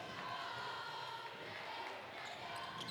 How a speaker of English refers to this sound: Bring you that crowd noise. There we go.